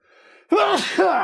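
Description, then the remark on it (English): A single sharp sneeze: a soft breathy intake, then a loud, explosive burst that trails off into a brief voiced tail. No talking. “Bless you.”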